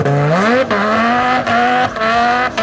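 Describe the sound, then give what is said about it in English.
A souped-up Viper sports car, used as a wedding getaway car, roars loud, revving up through several quick gear shifts with brief dips between, its pitch climbing in a strained, squealing whine. “Oh, I remember that souped up Viper you guys had for your getaway car when you and Doreen got married.”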